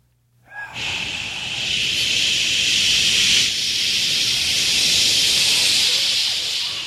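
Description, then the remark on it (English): Several people hiss steadily into a microphone, a bright, sustained breathy hiss that starts abruptly and holds for about six seconds before tapering as breath runs out. The voices imitate a hissing sound. “Everybody, when he goes to turn up, everyone make like hissing sound into the mic.”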